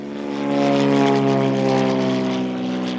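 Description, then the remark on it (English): Greg Malloy's propeller mapping aircraft, which scans coastline to map the seafloor, drones steadily overhead, its engine producing a loud, even hum with strong low harmonic tones that swell slightly and then hold for a few seconds. “Even Greg Malloy's aircraft has limits.”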